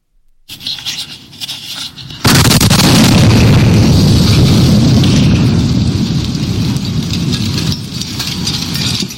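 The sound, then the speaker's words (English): After about two seconds of low background noise, a single huge bomb blast erupts on 2nd Avenue in Nashville at Christmas, with no vehicle traffic around. A loud, sustained roar and rumble follows, with crackling debris, and holds to the end. “Nashville Christmas Bombing”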